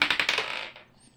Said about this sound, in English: And I roll the d4 this time.